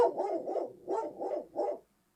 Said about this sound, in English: Walt is bummed too. Yeah. Yeah. Walt is goofy and Max a dog. Okay, well, we got his answer, and I'm totally leaving all of that in, by the way.